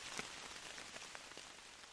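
Steady rain falls through trees, a soft continuous hiss dotted with a few louder drops pattering irregularly. No voices, just the even wash of rainfall.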